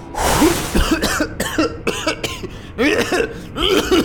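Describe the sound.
A person's voice imitates one head of a three-headed dragon coughing after it lands: a harsh, breathy burst followed by a run of guttural, groaning cough sounds, fairly loud, with no other talk.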